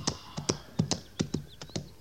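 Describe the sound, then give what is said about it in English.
Horse hooves clip-clop in a quick, uneven series of sharp knocks, several hoofbeats over a couple of seconds, fairly crisp with no talking. “I just don't trust that horse.”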